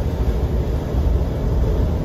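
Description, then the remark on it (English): A Detroit diesel truck engine runs with a steady, deep rumble and a throaty low drone that holds constant for the whole stretch, with no speech over it. “I like the sound of the Detroit engines. Got a unique sound to them.”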